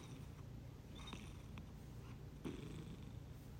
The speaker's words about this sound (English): Just a little purring.